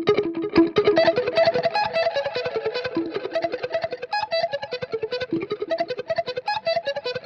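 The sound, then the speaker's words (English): Electric guitar plays a melodic line with each note rapidly double-picked to emulate a slapback echo, creating a quick repeated stutter, with a long delay effect trailing behind; fairly loud, no voices. “So I'm emulating that slapback echo that they put on it.”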